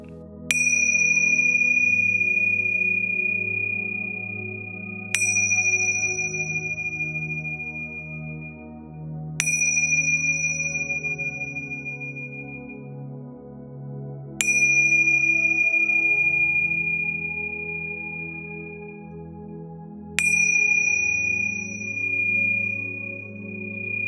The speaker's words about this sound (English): As I begin the meditation, I will ring the tingsha bells 5 times. Stay connected to each sound, and as each bell rings and dissipates, allow yourself to stay connected to the sound, one after the other, until the 5th bell is rung.